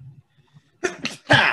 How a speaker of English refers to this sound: Bless you. God dang. Another one.